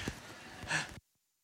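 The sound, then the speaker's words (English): A preacher blows their nose hard before preaching, a single rough, breathy honk lasting about a second that peaks near the end and then cuts off into silence. “Hey, I know this is poor form, but if I don't blow my nose, I'm not gonna be able to preach.”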